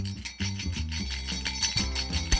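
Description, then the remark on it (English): Small jingle bells are shaken in a quick, steady rhythm, their bright tinkling bursts repeating for a couple of seconds over a low tonal hum. “I actually have jingle bells”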